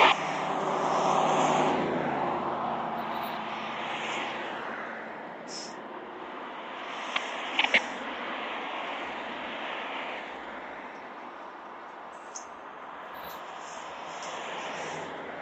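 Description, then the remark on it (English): A car passes by on the street, where cars pass every two seconds, a broad rushing swell that peaks early and settles into a steady traffic hum, with a few brief clicks midway and no talking. “That's the only reason why this car is passing every 2 seconds.”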